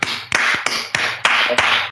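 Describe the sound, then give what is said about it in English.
Applause: a steady series of sharp, bright hand claps, about six in two seconds, each a crisp slap at an even rhythm with no voices. “So I think one more round of applause and thank you is in order.”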